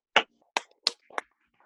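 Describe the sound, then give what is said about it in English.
A group of people clap hands in four sharp, crisp bursts at uneven intervals, with a few fainter smacks between them. The clapping is moderately quiet and there is no talking. “Hey, can we spend one moment and we'll all clap for a second?”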